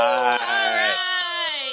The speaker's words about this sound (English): And we do have an update, and woohoo, we get to ring the bell again. Woohoo!